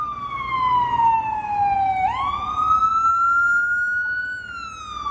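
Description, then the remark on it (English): A siren wails steadily, its pitch sliding down slowly then sweeping back up and holding high, loud over a low rumble of city traffic at a busy intersection across the street from Francis Tavern, a 17th-century tavern on the water's edge. “In the middle of the noisy sirens and the hip coffee places, Russell and I are mentally deep in the past.”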